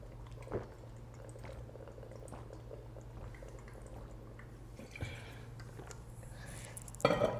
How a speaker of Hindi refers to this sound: be prepared, एक minute ले लो खुद को तैयार करने के लिए, पानी वानी पीना है पी लो, मैं भी पी लेता हूं ताकि हमारी एनर्जी का जो डोज है वो बना रह जाए